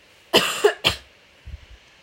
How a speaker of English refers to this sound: Sorry, I have to cough, hold on.